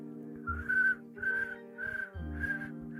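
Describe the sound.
Someone mimics crickets with four short, high whistled chirps repeated at an even, steady pace, each one wavering slightly, with no talking over them.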